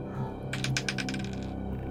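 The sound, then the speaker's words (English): A quick run of light, hard clatters as dice are rolled for a perception check, tumbling across a tabletop and bouncing several times before settling on a 7, over a quiet background with no talking. “Go ahead and roll your perception check.”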